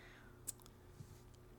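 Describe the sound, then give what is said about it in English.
A few sharp, light clicks from a mechanical pencil, one crisp snap followed by a couple of softer taps, against a faint steady hum. “I'm just going to... click a pencil.”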